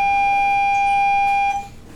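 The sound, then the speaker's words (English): An alarm rings as one loud, steady, high-pitched electronic tone that holds unbroken, then cuts off abruptly near the end. No one speaks. “Speaking of the bells and the noise. Once again, another interruption.”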